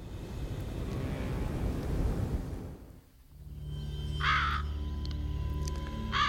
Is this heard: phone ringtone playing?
no